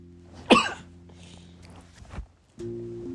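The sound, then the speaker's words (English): A single sharp, loud sneeze bursts out near the start, followed by a quieter breathy sound about two seconds later, all over a low, steady background hum. “the racism made me just sneeze.”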